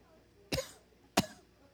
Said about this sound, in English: I just cough louder.